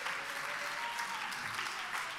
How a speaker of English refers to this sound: Come on, would you give God a hand clap of praise today?